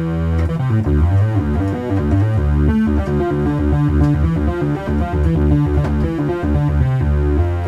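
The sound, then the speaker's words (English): A bright, buzzy single sawtooth wave on a monophonic synth with reverb plays a continuous line of single notes, one at a time, loud, with no voices. “So here's we'll just do a saw wave. Almost turn up. We want reverb, we'll give it a go.”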